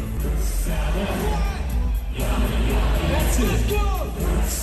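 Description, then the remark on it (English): A concert crowd cheers wildly for a band on stage, singing and dancing with hands in the air, a dense, continuous roar of shouting and whooping voices that stays loud throughout, with a few higher yells rising above the din. “And they show like the crowd shot. Are they going bananas?”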